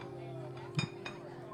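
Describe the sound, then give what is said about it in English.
Two quick, bright clinks of forks, knives and wine glasses being put away, the forks from IKEA, the first clink with a brief ringing tone and the second softer, over a steady low hum. “Yeah, let's move on to the forks and the knives and the glasses and stuff.”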